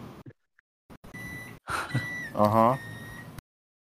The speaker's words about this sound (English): Who beeping? My microwave. The microwave do be beeping.